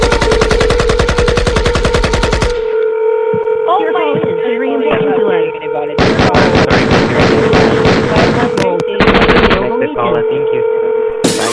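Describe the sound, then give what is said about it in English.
Loud bursts of rapid automatic gunfire from an AK-47 come in three rattling volleys with pauses between them, over a steady droning tone and some muffled voice-like sounds. “Hi, I have an AK-47 and I'm not afraid to use it.”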